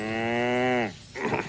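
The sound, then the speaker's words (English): A single long, loud cow moo from an HP Sauce commercial jingle holds steady with a slowly falling pitch for almost a second, then breaks off into a burst of breathy, noisy sound. No one speaks. “The commercial featured a cow singing another laid-back tune.”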